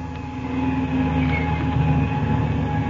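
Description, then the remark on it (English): A propeller plane engine is started and roars into a loud, steady drone, its low throbbing hum holding constant with a rough mechanical texture throughout. No voices are heard. “Get back from the prop, everybody. I'm going to turn her over.”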